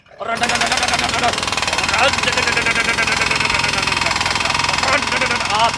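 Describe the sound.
A jackhammer pounds pavement in a loud, continuous rapid rattle that runs steadily for several seconds, with a few faint voice-like sounds buried under the din.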